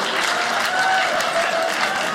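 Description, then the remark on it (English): An audience applauding, with dense, steady clapping and scattered cheers and whistles filling the whole stretch at a fairly loud level. “That is what I like, a crowd that is not a fan of my stepfather.”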